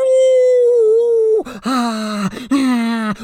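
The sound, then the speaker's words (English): A voice imitates howling gale-force wind: one long, steady wailing tone, then two shorter swooping moans, loud. “Gale force winds howling along.”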